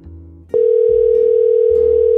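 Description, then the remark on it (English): A loud, steady ringing tone of an outgoing phone call placed on a Rodecaster kicks in abruptly about halfway through and holds without a break to the end, over a low background hum. “It's not even ringing. I had it muted. There it is.”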